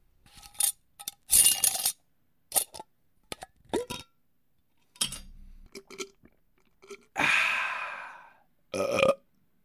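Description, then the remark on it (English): A quick run of assorted sound effects: sharp clicks, metallic clinks and short bursts, with a low, rumbling burp in the middle followed by a longer hissing rush and one final snap. “One of those sounds is bound to be good pickings. Probably not the burp, though.”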